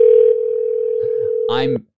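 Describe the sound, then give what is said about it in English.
A steady, loud telephone dial tone holds a single pitch for nearly two seconds while calling a phone number, with brief voices briefly overlapping near the end before it cuts off abruptly. “I've called this number that he sent to me.”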